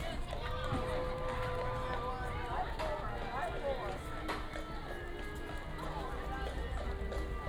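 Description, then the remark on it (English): A horse named Ducky clip-clops its hooves on Main Street amid a busy, bustling crowd, with people chattering all around and the steps partly buried under the noise. “For those of you playing at home, the horse's name is Ducky. You can tell by his name tag.”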